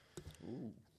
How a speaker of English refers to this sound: I made it pretty long without coughing.